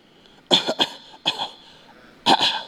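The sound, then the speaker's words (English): A person coughs in three short bursts, the first a quick double cough, then a single one, then another double, fairly loud with brief pauses between and no talking. “I have a little cough.”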